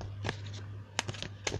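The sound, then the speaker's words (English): Quiet shuffling of a deck of tarot cards, shuffled three times: a handful of brief, papery flicks and snaps spread irregularly over a second and a half, with a faint steady hum underneath and no talking. “Shuffling 3 times.”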